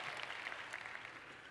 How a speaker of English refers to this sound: Oh, clap for Microsoft. Come on. No.